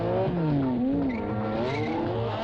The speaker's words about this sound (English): Sorry, that car. Every time we cut to that car with the engine roaring, it's just...